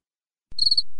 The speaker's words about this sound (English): Hey, man, do you got the cricket sound clip?